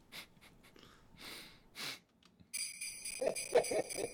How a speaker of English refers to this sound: The soundboard's gone rogue. Can I just get some sleigh bells?